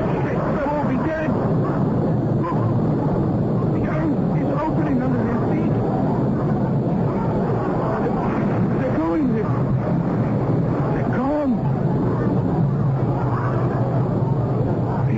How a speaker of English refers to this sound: See how the sky above the castle becomes dark and terrible. The thunder, the lightning.